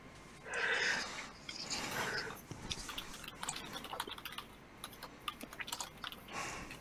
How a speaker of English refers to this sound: And you watch him tap a couple buttons on a very, like, old-school-looking keyboard. Yep. Like an old, like... Yeah, like an old clickety-click-click. Mm-hmm. How quaint. Some people just enjoy that mechanical keyboard feel.